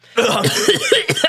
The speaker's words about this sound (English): coughs up some water.